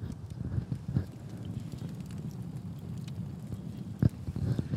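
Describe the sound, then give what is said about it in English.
A campfire crackles steadily while camping at Bullards Beach in Bandon in mid-December, with scattered sharp pops over a low rumbling, breezy background; one louder snap stands out near the end. “So you might hear some ASMR, some fire crackling.”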